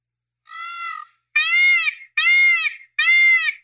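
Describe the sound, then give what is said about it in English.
A voice mimics a peacock's cry: four loud, nasal, wailing calls, the first a bit softer, each a rising-falling bleat rich in harmonics, with short gaps between. “Peacock sound like a baby with colic.”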